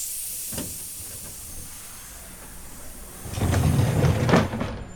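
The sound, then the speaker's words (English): Steady steam hisses throughout as a train pulls into a station in Chicago, swelling into a louder, rumbling burst of venting steam near the end before easing off. No one speaks. “In fact, we're pulling up to our first station.”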